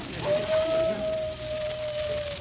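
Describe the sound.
A single long, wolf-like howl rises slightly, then holds a steady, drawn-out tone for about two seconds before trailing off, heard over a low background hiss.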